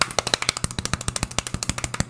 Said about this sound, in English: All right, guys, drum roll, please.